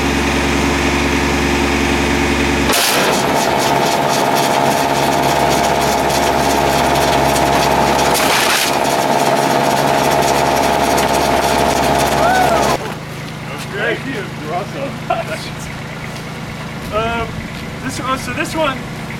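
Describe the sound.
A snowblower engine, pitted against a Naruto shuriken, roars in a loud, steady drone with a buzzing, whining hum that jumps up sharply, runs for several seconds, then cuts out, leaving people talking over a quieter background.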